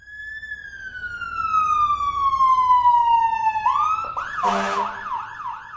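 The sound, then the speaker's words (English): A fire truck siren blares, one long descending wail that slides down, then breaks into a fast, rising-and-falling yelp, loud and steady with no voices. “If any amigos out there have sensitive ears, you may want to cover them up for a second or two because the fire truck sirens can be pretty loud.”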